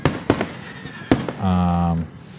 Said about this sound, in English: Every one of those fireworks is a thank you. Yeah, it's like just a little bit of a thank you to say, you know, we appreciate you.